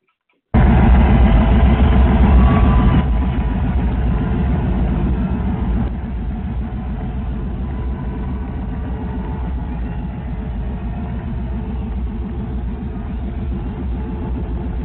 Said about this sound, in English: My fault. I was trying to start my car and got messed up. my fault, y'all. I was trying to start my car.